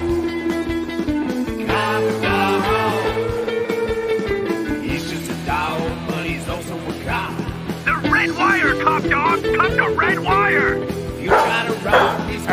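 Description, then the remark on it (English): A dog barks and whimpers in a string of high, repeated yips and whines, loud, layered over busy background music with voices talking in the mix. “Say hello to your new partner! Cop Dog.”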